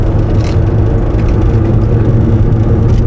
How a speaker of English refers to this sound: Trying to figure out what's rattling. Everything's rattling in this truck.